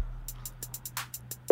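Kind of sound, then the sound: signal or alarm, phone call ringing tone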